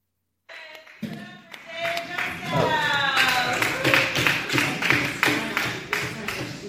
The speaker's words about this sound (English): The smattering of applause and...